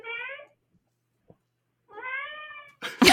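cat meowing

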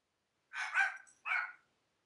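dogs barking from upstairs

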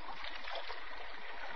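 flowing river water

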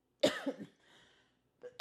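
cough

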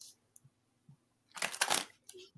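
shuffling tarot cards

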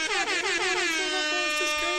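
air horn blast

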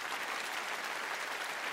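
applause

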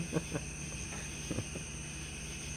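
crickets chirping at night

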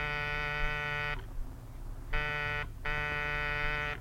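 door buzzer ringing

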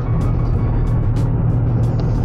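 car interior

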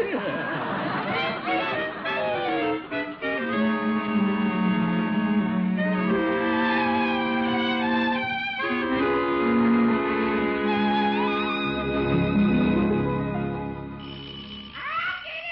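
doorbell ringing

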